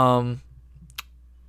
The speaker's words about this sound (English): Also, sorry, we have this weird thing in our basement that sometimes will, like, click behind us. It's like a pipe in the wall. It's the hot water heater. I can't do anything about it, so... If you hear a clicking, that's what it is.